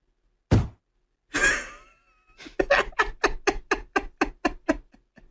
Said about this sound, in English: I want to hear the door slam one more time before I bring the mic up.